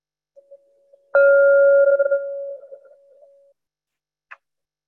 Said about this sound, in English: You'll hear three bells. One, just a moment. The second bell will be midway through. And then the final bell will be 60 minutes from now.